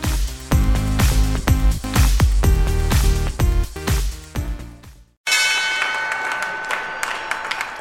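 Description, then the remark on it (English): A stock exchange opening bell on Wall Street rings loudly and rapidly for about five seconds, then cuts off as a crowd breaks into steady applause and cheering. “That was the opening bell on Wall Street.”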